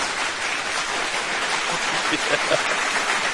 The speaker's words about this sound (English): You're getting applause, bus driver.